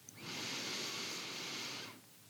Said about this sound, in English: nice deep breaths, maybe in through your nose, out through your mouth. I always find that the most centering and relaxing breaths have a shorter inhale and a longer exhale. So if you're breathing in through your nostrils, just fill all the way up.